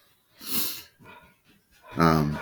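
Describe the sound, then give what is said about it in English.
The dog Harry huffs once, then after a short pause lets out a low, rumbling growl that starts abruptly and holds steady, moderately loud. “Wait, give it a second. He's growling.”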